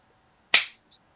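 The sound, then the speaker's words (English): A single crisp hand clap, bright and snappy, with a short ringing tail that fades quickly, then a faint small click. No one speaks. “That is what a hand clap sounds like.”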